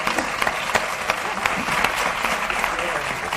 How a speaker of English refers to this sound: 4, 3, cue applause.